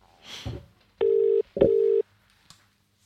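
A phone line's ringback tone sounds twice in quick succession, steady and fairly loud, after a short soft rustle at the start; a faint click follows, with no talking.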